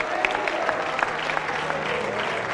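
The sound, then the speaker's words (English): A crowd claps steadily to thank the Lord, many hands blending into a dense, continuous wash of applause with sharper individual claps popping out, loud throughout. “Come on, clap your hands. Thank the Lord for his goodness.”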